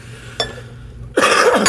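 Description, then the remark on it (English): A loud, rough cough erupts and lasts about half a second, preceded by a brief faint click. “Hang on, I have to make a disgusting cough now.”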